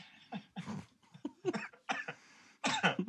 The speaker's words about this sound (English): Stop. Oh, man, my allergies are still... You're making me cough all night. That's actually you. Yes, it is. It is actually me.